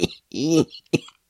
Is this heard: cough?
yes